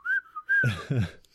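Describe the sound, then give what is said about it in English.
Two short, clear whistled notes from a person, moderately loud, followed by a brief burst of voiced sound from someone else. “They're doing a full episode just by whistling.”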